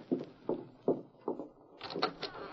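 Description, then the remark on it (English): A front door is opened: four evenly spaced, muffled thuds lead into a short burst of rattling and clicking as the latch and door move, with no voices. “He's coming to the door. You answer it.”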